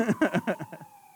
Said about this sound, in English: And this point has been brought to you by the ambulance.